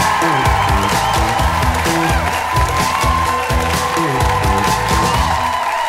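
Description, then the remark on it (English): At a comedy show, an audience claps and cheers loudly and steadily for the full six seconds for the next act, with scattered whoops over the dense applause and a rhythmic, bass-heavy music track running underneath. “Please give it up one more time”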